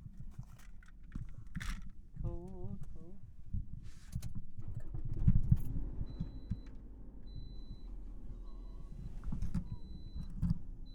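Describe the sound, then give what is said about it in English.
Keys jangle in short metallic bursts, a brief chiming tone sounds, then a car engine turns over with a low thump and settles into a steady idling rumble, with faint voices in the background; the car is started in cold weather. “Turn this car on too, it's getting cold.”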